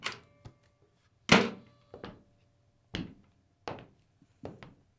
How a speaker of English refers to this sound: Yeah, come on in. Doors open.